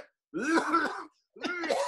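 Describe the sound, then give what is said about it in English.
Two forced, phlegmy wet coughs from a weed smoker, each a loud, throaty, rasping burst, the first drawn out for nearly a second and the second following after a brief pause. “Well, one thing I can cough really good because I smoke weed. So I can like give up nasty cough if I need to.”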